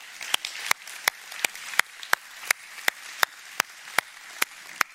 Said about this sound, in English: And so could we just give those guys a round of applause this morning? Can we do that?